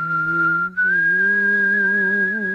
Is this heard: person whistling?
yes